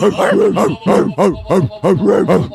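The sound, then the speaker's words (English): A person imitates a German Shepherd's deep barking, about six or seven loud, rhythmic woofs in quick succession, with no other talk. “German Shepherd.”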